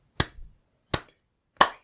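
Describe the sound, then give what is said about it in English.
Three sharp hand claps ring out one by one, made before starting a book reading, spaced slowly apart with brief pauses between them, crisp with no voices around them. “I'm just going to do some claps.”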